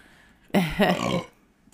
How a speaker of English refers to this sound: I keep burping, man. Yeah. I know. It's the Dr. Pepper, man. Anyways. You're drinking Mountain Dew. Well, I drank a can of Dr. Pepper earlier. I still got out the gases.